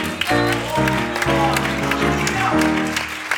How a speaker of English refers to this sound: Would you clap your hands unto Him today?